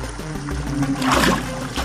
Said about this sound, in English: Oh, but the water is rising.